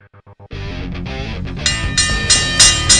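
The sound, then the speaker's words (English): A bell being rung in a studio: four quick short taps, then a loud, ringing metallic clang that sustains and swells, with bright bell-like strikes repeating about every half second. No one speaks. “Every time the way he's ringing the bell, I'm expecting JBL to walk through the door.”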